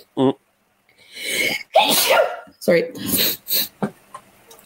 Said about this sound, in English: sorry, I have to sneeze.